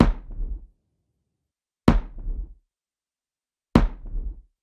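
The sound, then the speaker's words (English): A gunshot sample beat played with its Soundtoys Devil Lock and FabFilter Pro Q3 effects bypassed: three dry gunshot hits repeat at an even pace, roughly two seconds apart, each a sharp, loud crack with a short, thin tail that quickly dies out. No voices. “Let's take a listen to the gunshot beat with those two effects in bypass.”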